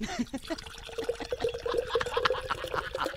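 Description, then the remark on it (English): Beer pours steadily into an official Hall of Fame beer mug, a continuous splashing gurgle with a faint fizzy hiss layered on top, lasting a few seconds. “And so without further ado, I begin to pour.”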